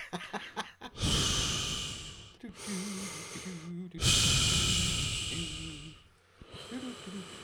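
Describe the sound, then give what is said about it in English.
A voice imitates the heavy, rasping breathing of a respirator under a black shiny helmet: two slow, loud inhale-exhale cycles, each long and hissing with a gravelly undertone. “And a breathing problem.”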